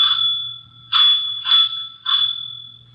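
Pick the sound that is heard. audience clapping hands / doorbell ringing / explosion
doorbell ringing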